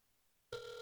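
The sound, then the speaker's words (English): A telephone bell bursts into loud ringing after half a second of near silence, a bright metallic trill that continues steadily to the end with no voices. “It's crazy that it's still ringing, and it's not like a porn thing or anything.”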